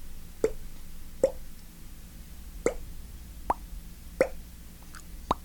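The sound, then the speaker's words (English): A voice imitates a water drop with six sharp mouth plops, each a quick rising pop, spaced irregularly about a second apart over a faint steady background hum. “I can make it sound like a water drop.”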